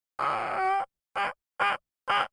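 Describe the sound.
A person vocally imitates a turkey call without a turkey call device: one long wavering, nasal yelp followed by three short, evenly spaced clucking yelps, fairly loud with no other sounds.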